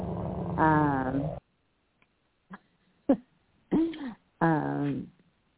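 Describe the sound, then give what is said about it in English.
A man imitates a dog growling with his voice, the growl reserved for Evan Engram: a long rough growl, a few short clipped grunts after a pause, then two more drawn-out growling snarls, fairly loud. “That dog growl was reserved for Evan Engram for years.”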